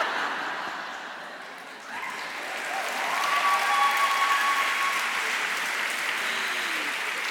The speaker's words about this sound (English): I'm presuming every woman who clapped there has done this the first time someone comes on your face.